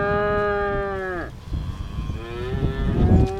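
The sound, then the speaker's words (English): Two long, loud cow moos, the first dropping in pitch as it fades, the second rising after a short pause, with gusty wind rumbling underneath, as a farmer tends his cows on a very windy day on a farm in southwest Missouri. “is tending to some of his cows on a very windy day on his southwest Missouri farm.”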